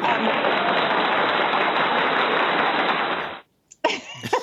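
A steady round of applause from a crowd, dense and loud for about three seconds before cutting off abruptly, followed by a brief pause and then a voice starting to speak.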